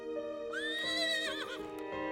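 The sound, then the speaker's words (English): An officer's horse gives a loud whinny lasting about a second, its high pitch rising and wavering before trailing off into a snorting breath. No one speaks. “Do you think we might borrow your horse?”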